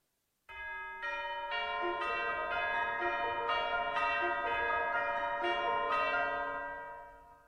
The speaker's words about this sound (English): First of all, obviously enough, chimes. Then listen to how those same chimes are combined with the piano, playing the same notes, but obviously in a different way.